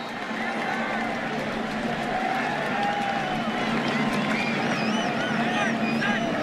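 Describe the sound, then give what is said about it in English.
A big stadium crowd at a USC Trojans football game roars steadily throughout after long snapper Jake Olson makes a good snap, a dense wash of cheering and babble with a few high whistles cutting through toward the end. “Listen to the crowd.”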